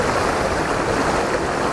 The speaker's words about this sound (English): It's really slippy down here, I've got to be very, very careful. So there's a little rivulet here on these very slippery rocks, and I can get the waterfall right in the background.